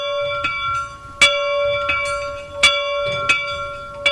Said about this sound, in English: This is the old factory bell here in Loch Considery. It would call the workers to work, break for break time, lunchtime, and going home in the evenings as well.